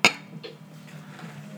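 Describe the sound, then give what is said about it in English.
Glasses of Sierra Nevada Oktoberfest beer clink together in a toast, one sharp, bright ringing knock followed by a softer second tap, then a quiet low hum with no talking. “We got the Sierra Nevada Oktoberfest here. Cheers to that.”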